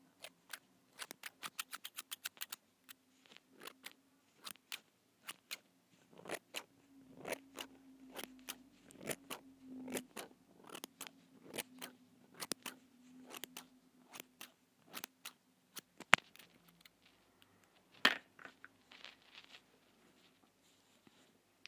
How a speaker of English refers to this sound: Got long nails again. Mini scissors.